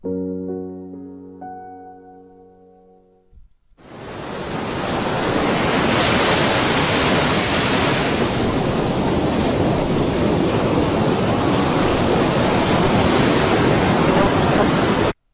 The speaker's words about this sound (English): Here's sleep sounds, ocean sounds.